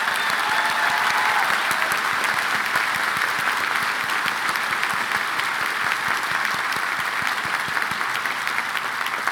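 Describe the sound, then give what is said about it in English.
Sustained applause from a large audience at a graduation ceremony for the class of 2023, a dense, steady wash of clapping at even loudness throughout, with no voices standing out. “And once again, applause for the remarkable, resilient, inspiring class of 2023.”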